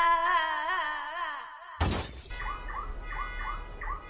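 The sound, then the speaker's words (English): A wavering electronic tone cuts off abruptly as an electronic device, Elaine unit 64235N, is smashed with a loud, shattering crash, followed by faint, rhythmic electronic chirps over a low hum. “He has destroyed Elaine unit 64235N.”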